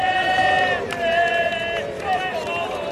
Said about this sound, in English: With cheers from the crowd of 5,000 or so who stood in the hot sun outside Milan's Duomo Cathedral to bid adieu.